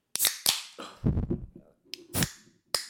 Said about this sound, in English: Maybe we can do something like just open the beer. Oh, yeah. Okay, should we open the beer now?